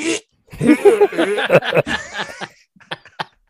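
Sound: voice imitating a fart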